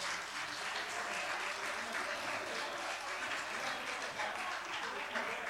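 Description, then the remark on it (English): Steady applause from an audience fills the whole stretch, a dense, continuous patter of many hands clapping at an even loudness with no voices standing out, as the audience claps for the standing people who attended the previous night. “All right, let's clap for these who were here.”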